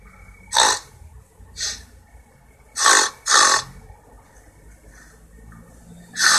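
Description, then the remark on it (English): A person imitates a Chinese pot-bellied pig with short, harsh, breathy squeals, about five loud bursts in an uneven rhythm, separated by quiet gaps, with no talking. “I want you to squeal like a Chinese fucking pot-bellied pig.”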